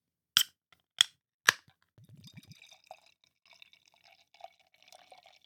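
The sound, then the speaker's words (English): Three sharp metallic clicks as a bottle of barrel-aged imperial stout is cracked open, then a short glugging pour followed by soft fizzing and trickling liquid, with no talking. “So let's crack open Dressed to Impress.”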